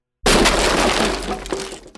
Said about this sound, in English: He didn't have time to scream as the hands burst through the wall, grabbed his head, and pulled.